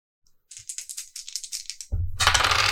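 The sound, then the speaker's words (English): Dice clatter in a quick run of about a dozen sharp clicks, followed by a louder, denser rattling burst as they tumble across a table. No one speaks. “I'm going to need you to roll spot hidden.”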